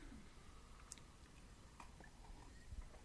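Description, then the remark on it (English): Someone at home takes a quiet sip of beer with soft wet mouth sounds and a few faint clicks over low background noise. No one speaks. “Oh, which we just took a sip.”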